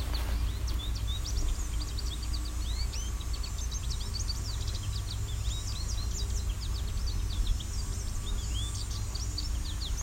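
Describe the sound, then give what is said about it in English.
A male American goldfinch calls on and off in quick bursts of high, thin twittering chirps, running the whole time over a steady low rumble, with no talking. “Very talkative male American goldfinch.”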